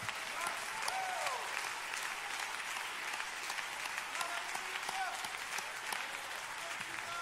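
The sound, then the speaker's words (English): An audience claps hands to the Lord in steady, dense applause, many overlapping claps forming a continuous bright crackle that holds an even loudness for several seconds, with a few faint voices underneath. “To clap your hands to the Lord one more time.”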